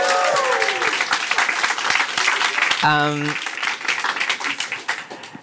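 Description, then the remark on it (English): An audience breaks into sustained applause, a dense wash of many hands clapping that stays loud throughout, with a brief pitched voice or tone cutting in midway before the clapping thins slightly toward the end. “So can we just give him a round of applause?”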